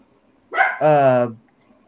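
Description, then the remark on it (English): A dog gives one fairly loud bark that stretches into a short, tonal yowl, standing alone against a quiet background. “Sounds like your dog wants the dog.”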